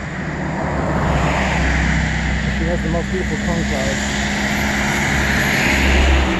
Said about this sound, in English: Yes, thank you, noisy truck. Guarantee when I turn this thing on, noisy truck passes.